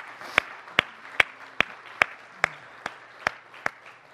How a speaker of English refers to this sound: Elders, deacons, stand up right now. We want to give you a round of applause. Come on, stand up. There we go. Let's applaud these people for leading at Harvest.